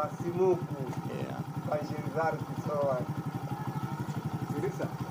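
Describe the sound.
A small Chinese motorbike engine idles with a steady, rapid putter as two riders set off, while indistinct voices murmur over the running motor.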